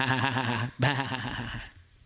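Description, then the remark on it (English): A sheep bleats twice in close succession, a loud, quavering, nasal call broken by a brief pause, the second cry trailing off and fading out. “And Samuel says, wait a minute, what is the bleeding of the sheep that I hear?”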